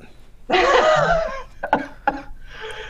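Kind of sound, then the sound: human body sound, coughing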